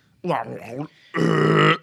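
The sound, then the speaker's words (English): A person vocally imitates a wall burping after a nail is spit out of it: a short, wobbly throaty sound followed after a brief pause by a longer, louder, buzzy belch, both clear with no other talk. “It burps, and then there's...”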